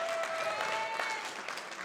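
An audience at a church worship service applauding themselves steadily, a dense wash of many hands clapping at once, fairly loud and sustained throughout with no voices standing out.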